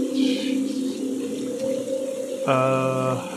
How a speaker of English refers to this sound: There seems to be a river actually running through it.